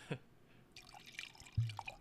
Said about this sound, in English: Pouring yourself a hefty glass.